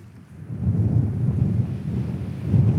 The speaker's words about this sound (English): the wind is pretty apparent now. It's pretty strong, isn't it?